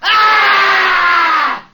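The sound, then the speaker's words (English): A man lets out a single wild, hoarse scream in a study, loud, held steadily for about a second and a half before breaking off, with no other sounds around it. “A wild, hoarse scream.”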